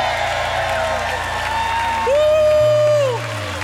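A crowd claps and cheers to cheer up a man, in a steady, loud wash of noise, with one sustained high-pitched whoop rising out of it for about a second near the end.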